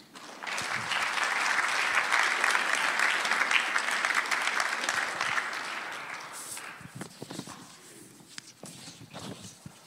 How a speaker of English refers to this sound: Now, let's just clap for Jesus.